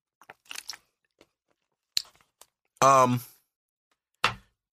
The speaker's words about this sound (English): Hold on. Let me breathe. Take a sip of water.